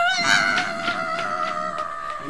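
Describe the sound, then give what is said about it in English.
An eagle screeches loudly as it takes off into the air, a harsh, sustained cry with a raspy, pulsing edge that carries on for a couple of seconds with no talking. “Eagle screeched and took off into the air, leaving a bunch of tail feathers in leopard's claws.”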